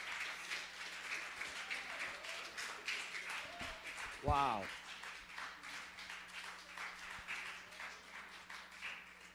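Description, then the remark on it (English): A church audience of fathers and children applauds steadily for the mothers, a dense patter of many hands clapping throughout, with a voice briefly exclaiming partway through. “I'd like all the fathers and the children to please clap your hands for all the mothers.”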